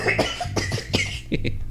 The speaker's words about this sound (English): I'm going to cough again. Watch this.